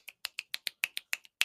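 Soft, quick finger snapping done as golf snaps in place of golf claps, about ten crisp snaps in a steady, slightly uneven rhythm over a second and a half, with no voices.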